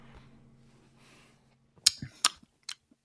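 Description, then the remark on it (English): Someone sips a beer, with a few sharp wet mouth clicks and small gulps spaced out over a second, then quiet; a faint steady hum sits underneath beforehand. “Take a little sippy poo.”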